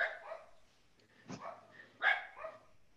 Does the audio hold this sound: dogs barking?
yes